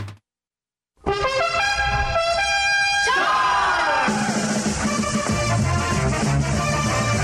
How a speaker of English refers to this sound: Well, there goes the train, cruising down the line.